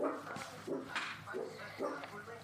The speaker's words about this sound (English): Don't worry about my dog, everybody. She's cool.